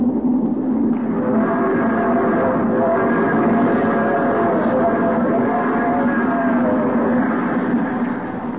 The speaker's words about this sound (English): The train roars through the night.